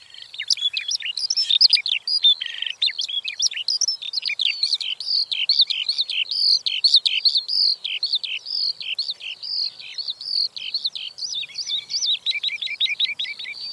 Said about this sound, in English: And here's the Eurasian skylark, which is really famous for its song that it often makes while flying high in the air.